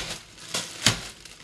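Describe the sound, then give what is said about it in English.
A bag of candy canes is whacked against a counter a couple of times to break the canes into crunchy little pieces, giving two sharp crunchy thumps with crinkly rattling between them and fainter taps trailing off. No voices are heard. “And just beat it on the counter, you know, a couple of times.”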